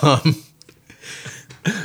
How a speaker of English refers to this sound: Thank you for yawning into the mic, by the way.